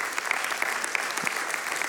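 Steady, dense applause from a crowd, a continuous wash of many hands clapping at a fairly even level with scattered sharper claps standing out, and no voices.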